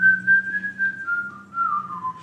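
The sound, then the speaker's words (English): A single clear whistle carries the slow, gently descending melody of a newly written song, with sustained notes, over a soft low hum in the background. “Come over to the piano. I'll whistle the melody.”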